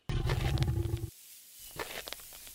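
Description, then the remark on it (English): A deep, rumbling creature roar bursts out loudly for about a second and cuts off, followed by a quieter, ragged growl with raspy, uneven pulses. “When it's not growling or trying to grind you into the ground, it looks almost kind of cute.”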